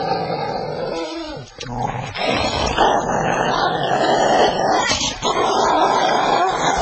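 Yukon King, Sergeant Preston's wonder dog, growls and snarls loudly, a rough continuous rumble broken by a few sharp barking bursts, with no talking over it.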